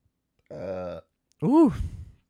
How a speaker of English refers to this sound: Big burp there.